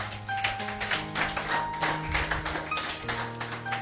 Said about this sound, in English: If you have been blessed, just give the Lord a mighty clap offering.